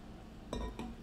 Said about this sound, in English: Sip.